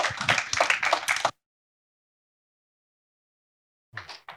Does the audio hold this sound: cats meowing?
no